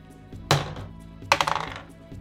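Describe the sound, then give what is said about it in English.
A d20 die clatters onto a hard tabletop for a dexterity roll, first a sharp knock, then a second drop that rattles through a quick series of diminishing bounces before settling. Fairly crisp, with no voices. “Yes, you do have to roll again. You have to roll a dexterity.”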